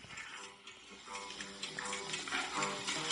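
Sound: pig grunting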